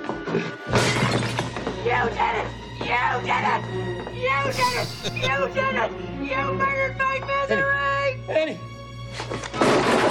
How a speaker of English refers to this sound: Yeah, she grabbed the little table that the pot plant was sitting on and she smashed it above the bed.